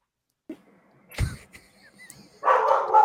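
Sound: dogs barking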